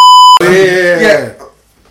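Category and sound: sound effect, censor bleep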